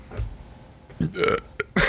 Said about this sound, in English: Excuse me for my burp.